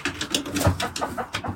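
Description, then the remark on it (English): Birds call and coo inside a shed with a corrugated roof and a concrete floor, a busy overlapping chatter with repeated short bursts and a low cooing undertone, no voices present. “So the birds should be able to remain nice and dry when it's raining and not become covered in mud”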